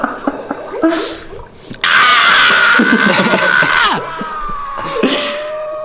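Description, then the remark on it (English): A loud, chaotic mix of screams and shrieks, with one sustained high wail in the middle, over a churning, bubbling texture like a boiling cauldron, punctuated by brief noisy bursts. “I'm getting overstimulated by all these cauldron noises and screaming.”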